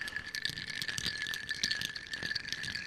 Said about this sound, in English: He's stirring. Nice little ASMR there for the folks who like that thing. I forgot to get the ding. He's stirring the drink.